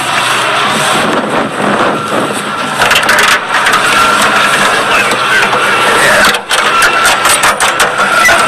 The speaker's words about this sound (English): So, it's the engine compartment. This is an Allison C-18, or actually, that's a military designation, I forgot what it is. But it's the first run of the Allison series.